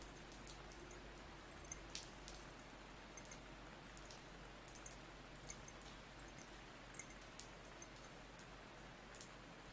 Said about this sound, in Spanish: Sí, todavía está lloviendo. Parece que va a llover toda la noche.